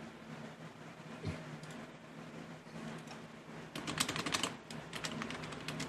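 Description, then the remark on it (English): Rapid, uneven clatter of typewriter-like typing, keys striking in irregular bursts that grow denser and louder toward the end, over a low steady background hum. “Here's the typing, just”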